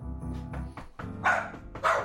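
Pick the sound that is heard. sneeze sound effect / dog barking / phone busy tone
dog barking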